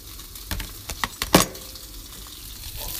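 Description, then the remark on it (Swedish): Bread sizzles in a hot frying pan, a steady crackle with a few sharp pops and clatters near the start, then settling into an even, hissing fry. “Brödet ligger i pannan.”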